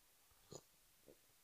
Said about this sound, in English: You know, just gonna take a quick sip of tea. Same rules as yesterday. Make a cup of tea, and as soon as that's gone, then I'm gonna stop.